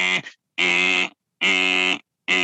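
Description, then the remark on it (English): A voice imitates a buzzing alarm clock: loud, nasal, throaty buzzes repeated in a steady on-off rhythm, about half a second each with short silent gaps. “And you know, those alarm clocks, sometimes they sound like...”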